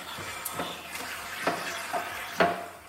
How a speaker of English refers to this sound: So right now we just turned the pressure cleaner on. And the water doesn't shoot out until we push down the dish that we're cleaning. Yeah. And that activates the water. Jesus. So let me show you how. We've got a pretty dirty dish here.